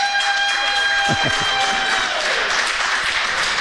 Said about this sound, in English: Just give Ron McLean a round of applause